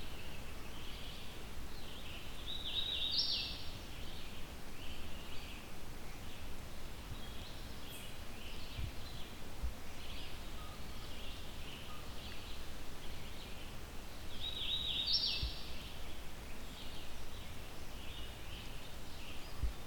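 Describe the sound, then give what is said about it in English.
A songbird sings a short, bright whistled phrase, weeta weeta weetio, twice, about twelve seconds apart, over the steady hiss of a fairly dense, mature forest with faint chirps scattered in between. “So weeta weeta weetio.”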